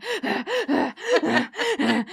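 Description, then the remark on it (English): A person imitates the heavy panting of someone who has just been running: rapid, rhythmic, voiced huffs of breath, about eight gasps in quick succession. It is loud, with no other talk. “And Angel is panting because he was just running. He's panting up a storm.”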